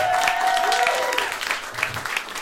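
Steady audience applause fills the whole stretch, a dense wash of clapping at even loudness, with a high whistle ringing through the first second before bending downward and fading.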